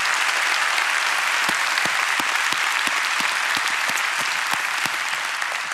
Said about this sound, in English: All the campuses, let's celebrate. Let's celebrate all these people that are online that God has given us a chance to reach. Let's give them an applause today.